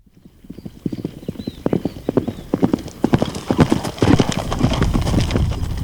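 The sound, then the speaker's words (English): Rapid, overlapping hoofbeats of ten galloping horses in the Palio de Siena, the yearly horse race in Siena, pound, building in loudness and density as they thunder past amid a rising wash of crowd noise. “So the big event that happens every year in Siena is a horse race.”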